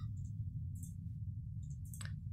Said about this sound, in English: So I'll be rolling 4 dice, and it's daring medicine?